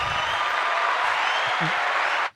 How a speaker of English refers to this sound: Come on. Where's my applause button?